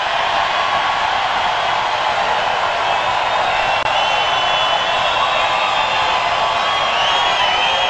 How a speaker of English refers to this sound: The crowd goes wild. Yes, they do, and they continue going wild. This chant goes on and on and on. What are they chanting? Build that wall? Build that wall.